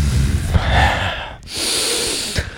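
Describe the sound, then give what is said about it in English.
Two long, heavy breaths, a drawn-out rushing inhale and exhale separated by a brief pause, loud and airy with no talking, as someone tries to control their breathing. “I need to fucking control the breathing.”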